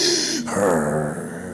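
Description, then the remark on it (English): A voice imitates a man snoring, the biblical Elkanah asleep in a hotel room: one loud, breathy inhale that rolls into a drawn-out, groaning snore lasting about a second and a half. “The man was snoring.”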